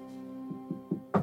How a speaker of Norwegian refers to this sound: Bank I bordet.